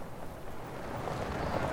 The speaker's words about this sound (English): When the prairie sky is a dome of ozone, the earth a flat line, and the wind pounds past your ears, rippling your t-shirt like you're flying again.